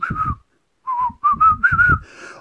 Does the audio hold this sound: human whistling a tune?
yes